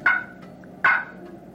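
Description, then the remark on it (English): Two short, sharp clucks from a wooden turkey box call imitating a wild turkey's single-note cluck, spaced under a second apart, each a bright percussive note with a brief ringing tail, fairly loud with no voices. “That's a cluck.”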